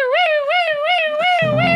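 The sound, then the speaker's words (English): A siren wails in a loud, steady tone that rises and falls in quick, regular cycles, with a low rumble joining in near the end and no voices. “The siren is not a toy.”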